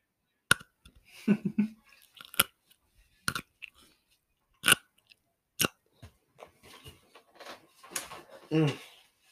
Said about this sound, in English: I'm gonna do a pickle ASMR crunch.